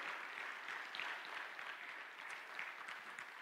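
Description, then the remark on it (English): An audience claps steadily in thanks that God has blessed them this year, a dense, continuous patter of many hands with no voices rising above it, holding an even level throughout. “I wonder if somebody could just resound in a little hand clap and say, I'm so thankful that God has blessed me this year.”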